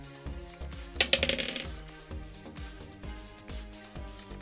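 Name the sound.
dice being rolled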